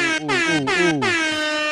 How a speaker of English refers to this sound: And we got, hold up now. See, now special guests get air horns.